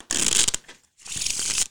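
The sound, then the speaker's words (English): Two quick bursts of crisp, papery riffling, each lasting around half a second with a short pause between, as a deck of playing cards is shuffled. “Shuffle them up a little bit.”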